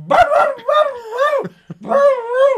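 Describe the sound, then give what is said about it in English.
A dog lets out a string of drawn-out, yowling barks, loud and pitch-bending, in about three bursts with a short gap before the last one. “And his barking right now is exactly like the dog sounded when I went to the front door.”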